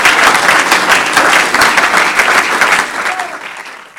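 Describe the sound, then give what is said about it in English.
An audience claps their hands to the Lord in a loud, sustained burst of dense applause that holds steady for several seconds before starting to thin out toward the end. “Clap your hands up to the Lord.”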